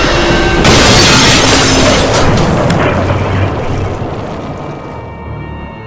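A tree crashes down with a sudden, loud splintering roar, then a long rumbling, crackling tumble of breaking branches that slowly fades over several seconds. No one speaks.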